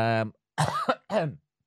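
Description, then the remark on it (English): A person lets out a short run of harsh, heavy coughs, three rough bursts separated by brief pauses, loud and raspy, with a voiced, throaty edge. “he says, coughing his fucking lungs up.”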